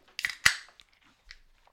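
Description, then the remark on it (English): Cans of beer from Little Rivers Brewing Co., a craft brewery in Scottsdale, Tasmania, crack open. There are two sharp snaps in quick succession, the second louder, each trailing into a brief fizzing hiss, then a softer click afterward. No one speaks. “Yeah, you guys crack them open, have a bit of a go, and I'll tell you a little bit of info about Little Rivers.”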